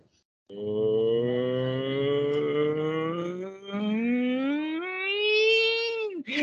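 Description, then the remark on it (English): A voice imitates a car engine revving up: a buzzy, sustained hum whose pitch climbs steadily for about six seconds, with a brief dip midway, then cuts off sharply. “But then you can hear it as the engine speeds up and it goes to...”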